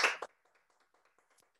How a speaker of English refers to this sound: Yeah, yeah, I can clap for her for that because that's a big breakthrough.